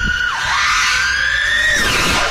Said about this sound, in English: I mean, you've seen those FPV drones? Yep. And how fast they go? Like, listen to this thing. Tell me if you'd get on it.